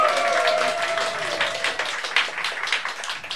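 A crowd cheers and applauds steadily for a performer dancing with ribbons before a song, dense clapping mixed with whoops and a sustained high shout, fairly loud throughout with no individual speech.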